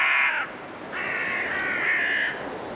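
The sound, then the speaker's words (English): Five carrion crows give harsh, drawn-out caws, one short call followed by a longer one, over a steady rush of blustery wind in a cold woodland at dusk in Woodchester Park, Gloucestershire, England. “Five carrion crows calling through the blustery winds in Woodchester Park in Gloucestershire, England.”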